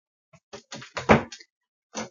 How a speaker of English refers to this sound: Close my door, please. Thank you.